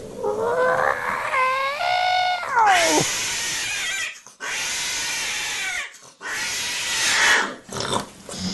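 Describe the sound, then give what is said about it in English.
A voice imitates a female cat's yowl during mating, as the male cat mounts her: a wavering, rising, nasal wail that breaks into three loud, harsh, raspy screeches separated by short pauses. “Female cat goes from kneading her claws and just being blasé to being full out.”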